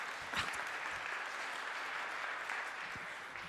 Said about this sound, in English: Let's give her a clap for coming up.